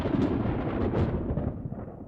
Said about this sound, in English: A moment later, a flash of sheet lightning and a low rumble of thunder came from where it had fled.